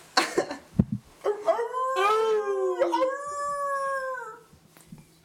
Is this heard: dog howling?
yes